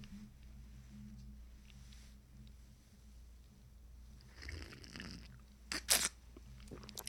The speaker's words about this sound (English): Quick sip of coffee, boss. Don't mind me, boss.